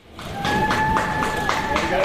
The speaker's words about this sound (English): Welcome back to Wellington, Winston Peters, the New Zealand First leader, sweeping into the capital in style, applauded by the fellow airport passengers, thrilled to have him back.